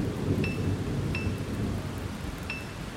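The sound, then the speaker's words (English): Heavy rain hisses steadily over a deep, continuous rumble of thunder, with a few faint high-pitched ticks scattered through it. No one speaks. “2 seconds later, there was thunder caught me off guard”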